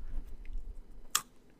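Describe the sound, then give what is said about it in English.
A person eating cold fish as a snack makes a single sharp crunch, like a bite into a crisp snack, which stands out over a low background rumble, with quiet chewing-like noise around it. “I'm going to be crunching. It's going to be some ASMR in this episode.”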